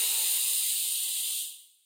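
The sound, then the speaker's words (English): A single smooth, steady breath drawn in through the nose into the belly during a breathing exercise, a soft airy hiss like an ocean wave washing in, holding even for over a second before tapering away to silence. No talking. “You're making like the sound of an ocean wave.”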